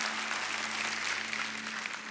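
A church crowd applauds steadily, giving the Lord a hand clap, a dense, continuous patter of many hands clapping at an even level throughout, with a low steady hum underneath and no voices standing out.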